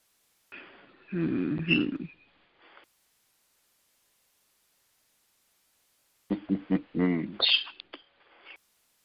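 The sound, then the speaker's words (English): Two separate bursts of coughing or throat-clearing, a few seconds apart with silence between, each a rough, raspy vocal fit at moderate loudness. “Somebody coughed.”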